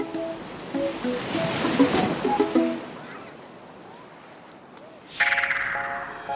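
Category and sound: nature, ocean waves crashing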